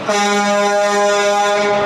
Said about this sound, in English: Yeah, honk, honk. Honk, honk goes the truck. Honk, honk goes the truck. Honk, honk goes the truck.